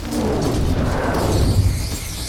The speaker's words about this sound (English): You feel the walls of the caldera shake as elemental damage has been struck upon the land on the side of the caldera itself. You hear bellowing giants yelling. You hear magical missiles and magical arcane explosions outside.